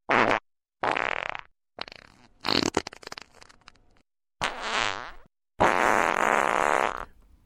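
A loud string of fart sounds, about five separate bursts of varying length with short silent gaps between them, the last one long and drawn out. No talking.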